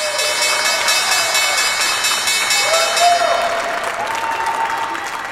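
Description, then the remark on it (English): Steady applause and cheering from a large crowd at the New York Stock Exchange at the opening bell on a Tuesday morning, a dense wash of clapping with a few raised voices and faint whistling tones rising above it, continuous throughout. “smiling and cheering over at the New York Stock Exchange this morning.”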